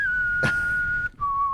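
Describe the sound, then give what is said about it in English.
A person whistles a long, steady high note imitating the whistling noise made by bats with holes in their wings, like a samurai-like whistle before an attack, with a breathy rush of air early on, a brief break, then the tone resumes slightly lower. “Some kind of samurai-like whistle sound before the attack.”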